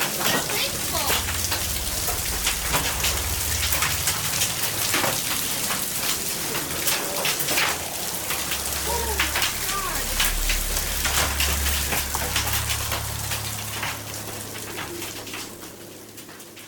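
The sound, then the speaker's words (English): Hail and heavy rain pound hard surfaces in a dense, irregular clatter of sharp impacts, loud, over a low rumbling undertone, easing slightly near the end. “Any thunderstorm which produces hail that reaches the ground is known as a hailstorm.”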